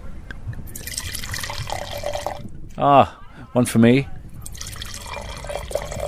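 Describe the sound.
Wine splashes steadily into a glass, then a short spoken remark interrupts before a second pour trickles and gurgles into another glass.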